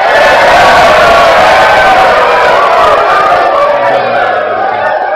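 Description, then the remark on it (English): A large crowd roars with sustained cheering and applause, a loud, dense wall of voices and clapping that holds steady for several seconds with occasional whoops rising above it. “Crowd applause.”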